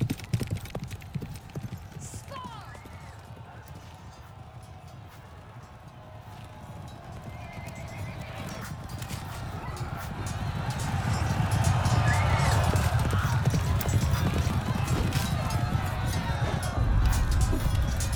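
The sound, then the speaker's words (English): A horse gallops with a rapid clip-clop of hooves that grows louder partway through, with a brief whinny mixed into the steady, rumbling rhythm. “She galloped away.”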